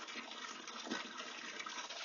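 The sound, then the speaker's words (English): Water pours steadily into a trough to water two piglets, a continuous gushing and splashing that holds at an even level for a couple of seconds with no voices. “But I will water these two piglets first.”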